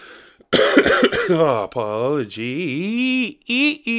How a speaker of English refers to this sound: Apologies for the cough. And the, oh my god, I've burped, squeaky chair, coughed and snorted so far.